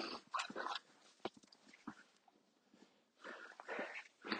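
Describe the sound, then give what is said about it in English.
A dog named Wolfie makes excited, broken whimpers and snuffly growls in quick bursts, with a short lull in the middle before the agitated noises pick up again. “Wolfie's going crazy.”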